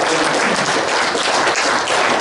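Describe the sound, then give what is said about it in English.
A church audience claps together in a dense, steady burst of applause for the music team that leads Sunday worship, filling the room at full loudness throughout, with no voices audible over it. “And I just want to give them a round of applause because they do an awesome job.”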